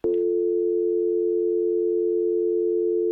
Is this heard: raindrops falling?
no